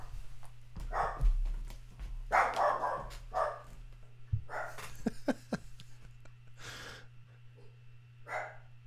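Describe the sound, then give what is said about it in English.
A dog barks in a series of sharp, irregular, fairly loud bursts, thinking the mailman was there, with a steady low electrical hum underneath and no talking. “Dog barking.”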